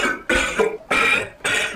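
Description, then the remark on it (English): A person coughs three times in quick succession, each cough a harsh, fairly loud burst, with short pauses between them and no talking. “I think you just coughed.”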